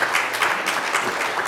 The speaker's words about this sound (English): Come on and clap your hands and tell the Lord thank you.